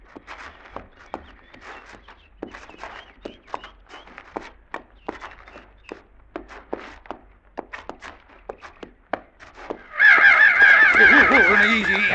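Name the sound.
crows cawing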